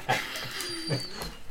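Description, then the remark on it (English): Penny, a female dog, whistles through her nose: a thin, high, wavering tone held for over a second, mixed with soft snuffling breaths and faint sniffs. “She's nose whistling at me.”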